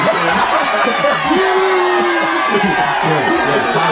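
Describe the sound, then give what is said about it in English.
A loud crowd cheers steadily for the full four seconds, a dense wash of noise with a single sustained whoop rising above it partway through. Clapping may be mixed into the roar. “It's the one big round of applause.”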